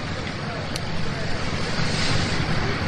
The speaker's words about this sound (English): Another SpaceX launch to the International Space Station. T-minus 10. Go for launch. And we are igniting the engines. And we're clear of the tower.